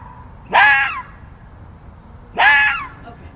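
A fox gives two harsh, rasping screech-barks, each about half a second long and separated by a pause of over a second, loud against a faint steady background.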